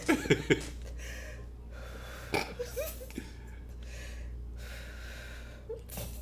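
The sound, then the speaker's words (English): Heavy, ragged gasping breaths, like someone hyperventilating, come in short sharp bursts at the start, again midway and briefly near the end, fairly loud over a low steady hum. “Why you breathing like that?”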